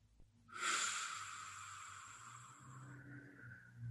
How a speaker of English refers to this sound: There you go, just breathing out through the mouth. There you go. Good. Yeah. Keeping it consistent. breathing away any thoughts. If there's any thought that comes up, you're just going to blow it away.